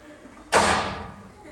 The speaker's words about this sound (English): We need a door slam.